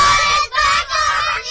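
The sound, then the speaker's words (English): A large group of schoolchildren on the KCLR Packed Lunch Tour screams together on a countdown, loud and shrill, in three sustained bursts separated by brief dips for breath, the crowd noise filling the space. “in a second I want all of you to scream, John, it's back over to you.”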